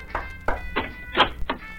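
Five dull knocks on an office door in a slightly uneven rhythm, each a short hollow thump, with a faint steady hum running underneath and no voices.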